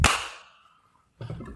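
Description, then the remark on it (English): One sharp, loud hand clap cracks out and rings off in a quick fading tail, followed by about a second of quiet before voices begin talking. “Three, two, one, clap.”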